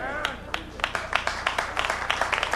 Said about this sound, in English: I'm gonna stop clapping again. That's making me mad.